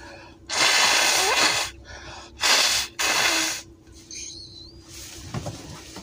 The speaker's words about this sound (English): As I blow my nose, right?